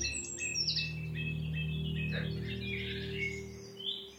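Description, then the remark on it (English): A song thrush sings loud, clear phrases, each short phrase repeated several times in quick succession, with a steady low hum in the background. “Song Thrush very loud and repeats each phrase.”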